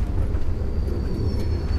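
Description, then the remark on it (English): A steady, heavy rumble of a passenger train rolling along the tracks as it arrives in Elkhart, Indiana, at 7 a.m. after an overnight journey, with a faint high whine riding above the low drone. No voices are heard. “It was 7 a.m., and I just spent the night on the train.”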